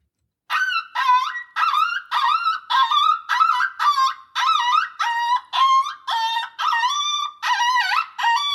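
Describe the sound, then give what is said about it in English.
A coyote pup distress call played from a Fox Pro X2S electronic game caller: a rapid, loud run of high, wavering yelps and whines, about fourteen bursts in steady rhythm, each sliding up and down in pitch. “This is going to pull in males and females, and this is coyote pup distress.”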